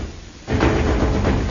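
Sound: door opening and closing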